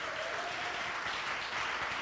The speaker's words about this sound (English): Come on, if you believe that, I need everybody to stand to your feet, if you will, and believe the word of Almighty God. Hallelujah. Let's clap our hands unto God this morning.